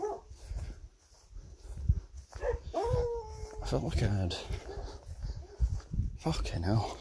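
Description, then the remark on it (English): Several dogs bark and howl, a drawn-out howl rising among sharp barks, with a person talking over the noisy outdoor scene. “Shouty dogs.”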